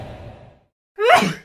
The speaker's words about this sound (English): Oh, I think I caught the sneeze on the podcast. It's the Friday pod started by a sneeze.